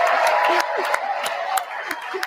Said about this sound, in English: They all stand up as soon as he comes in. Of Ukraine. Okay. So this is the whole time. So we're at a 2-minute standing ovation.